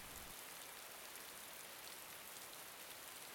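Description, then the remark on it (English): Steady rain falls continuously, a soft, even hiss of countless drops pattering on a surface, fairly quiet and unbroken, with no voices. “No wind over here, just rain.”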